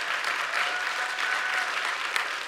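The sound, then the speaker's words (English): A Christian church audience gives a weak golf clap, light, scattered applause, a thin steady patter of many hands clapping softly, with no voices over it. “That was the weakest golf clap I've ever heard from Christians.”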